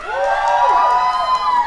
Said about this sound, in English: All of you young people out there, can I hear a noise? Can you scream for me on the count of three? One, two, three.